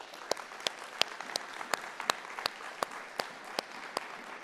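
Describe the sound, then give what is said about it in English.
A church audience applauds to thank the worship team and production team, in a steady, dense wash of clapping, with sharper individual claps popping out at a regular beat of about three per second. It carries on at moderate volume without any talking. “We had a worship team that got here especially early, a production team, and I think it's appropriate for us to just thank them through applause.”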